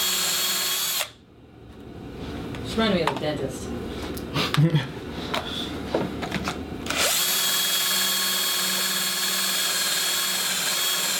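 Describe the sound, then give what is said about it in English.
A power drill whines loudly and steadily as it drills through a computer, cuts out for several seconds while voices talk over quieter clatter, then roars back on at full intensity until the end. “Reminded me of a dentist. Oh, I think we broke through something.”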